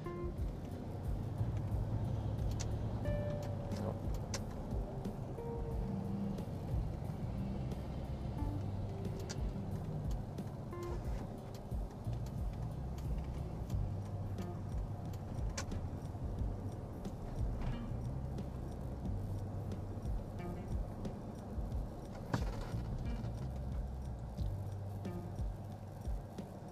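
Steady low rumble of a car moving through road traffic, a continuous engine and tyre drone with faint passing noises and occasional small clicks, no one speaking.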